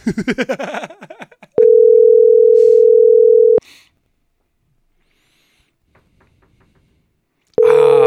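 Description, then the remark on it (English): An outgoing phone call rings out with a steady, loud electronic tone lasting about two seconds, then a long silent pause before the tone starts again; a brief voice-like sound comes just before. “I hope he answers the phone.”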